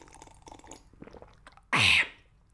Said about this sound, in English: For all y'all audiophiles out there, pardon moi. Just gonna have a quick sip of water. Water break, balls. Thank you, balls. Gonna sip of water, balls. Much obliged.